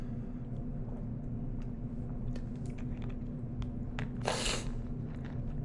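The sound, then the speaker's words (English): A single short slurping sip of a drink, preceded by faint mouth clicks and small handling noises, all over a steady low hum with no talking. “Excuse me while I take a sip of this drink.”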